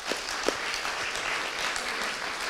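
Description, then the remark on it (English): A crowd applauds steadily, a dense wash of overlapping claps holding an even loudness for a couple of seconds with no voices rising above it. “Yeah, give him a hand.”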